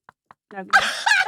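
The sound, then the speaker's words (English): Two soft, dull knocks on a breast implant, evenly spaced, followed by a loud, high-pitched vocal squeal or laugh that continues to the end. “Because it's let me just actually, can I knock on your boob? Yeah, gonna knock.”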